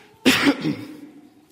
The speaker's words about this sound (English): It's not COVID, it's not the flu. It's a lingering cough for the last 4 or 5 weeks.